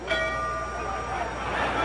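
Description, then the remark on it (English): A boxing bell rings out at the start of the Cassius Clay versus Sonny fight, its bright metallic tone lingering and fading over a steady wash of crowd noise that swells slightly toward the end. “But guess what? That bell rang.”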